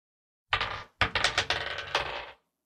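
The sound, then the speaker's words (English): Dice rolled for initiative tumble across a table: a sharp first clatter, then a quick run of rattling, bouncing clicks that settle within about two seconds. No one speaks. “Let's all re-roll for initiative.”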